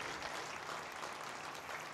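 loud audience applause

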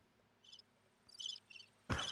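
crickets chirping sound effect

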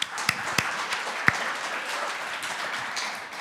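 audience applause

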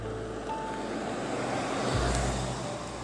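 truck passing on road

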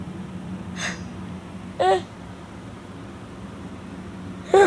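yawning

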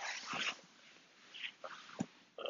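dog

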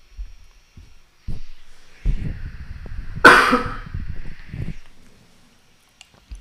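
coughing

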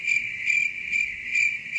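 crickets chirping sound effect

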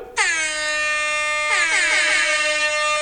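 air horn sound effect

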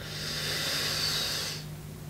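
deep breathing exercise

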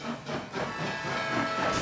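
steam train sound effect

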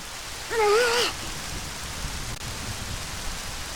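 rain falling

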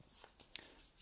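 shuffling playing cards

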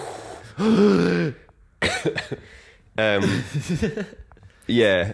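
coughing and throat clearing

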